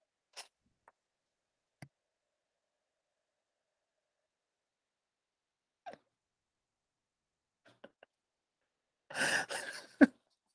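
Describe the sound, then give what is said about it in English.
Near-silence with a few faint clicks, then a single loud human cough bursts out near the end, harsh and brief, with no one talking. “I had to cough”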